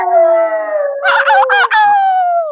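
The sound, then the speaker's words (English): A person howls loudly in imitation of a dog or wolf, one long sustained wail that wavers and breaks in the middle before sliding gently downward and fading. “And I hope she's done howling like a.”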